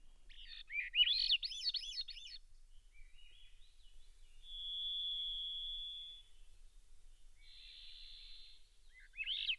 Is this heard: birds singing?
yes